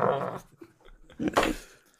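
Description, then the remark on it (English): Two short, low, dog-like growls coming from a bag, one at the start and another a moment later, moderately loud, with a brief quiet gap between them and no talking. “Just giving him a bag that's growling slightly.”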